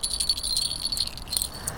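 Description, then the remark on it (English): Small bells on the collar of Enki, a female dog, jingle softly, a faint, high-pitched tinkling that repeats in light, irregular shakes for a couple of seconds with no voices. “Hear her bells.”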